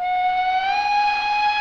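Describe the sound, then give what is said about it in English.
A train whistle sounds as the train of Duskwall arrives, a single loud, sustained blast, a steady mid-pitched tone with rich overtones that creeps slightly upward in pitch, with no voices. “Train of Duskwall is now arriving.”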